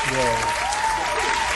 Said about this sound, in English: Let's give a round of applause to these people at the game.